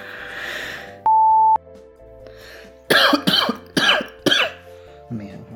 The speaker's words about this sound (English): This is going to take forever because of the coughing.